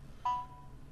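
A single bright notification ding from a smartwatch alerting to a watch software update: a clean, mid-high chime that strikes sharply and rings out in a smooth fading tail over a faint low background hum, with no talking.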